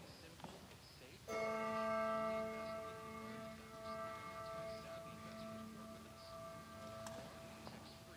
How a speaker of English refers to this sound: God of time and bells that toll